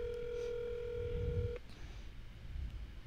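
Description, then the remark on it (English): A phone's outgoing ringing tone sounds once while calling a girl, a steady electronic buzz lasting about a second and a half before cutting off, over faint low background noise. “I'm gonna call a random girl. Okay. On my phone. I'm gonna see if she answers.”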